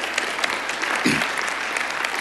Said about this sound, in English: Hallelujah. Some people clapping. Yes.